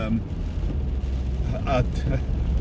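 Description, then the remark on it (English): A car drives slowly through deep water, its engine a steady low rumble under a constant wash of noise, with a brief murmur of a voice partway through. “I have no idea how deep this car can go without conking out, but vehicles are making it through at the moment.”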